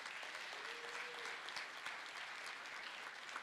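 A room full of people claps steadily, a dense wash of many hands sustained at an even level for a few seconds without any talking.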